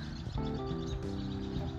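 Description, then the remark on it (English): A male bird, black with a shiny veil of rainbow colors on its chest, calls to attract a female in low, drawn-out tones that hold steady and fill the short stretch at moderate loudness, with no talking over it. “And he's like, I think he's trying to draw a female in. Hear that? There's different birds there, but.”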